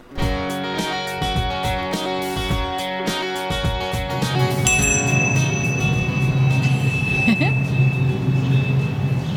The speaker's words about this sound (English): No, we usually end with a bell, but today we thought we'd start with it. I'm just feeling bellish today.